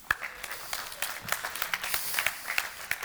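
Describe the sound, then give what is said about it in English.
Sparse, half-hearted audience clapping: scattered, uneven claps at a modest level, never building into full applause, with no one speaking over it. “That was a half-hearted clap, wasn't it?”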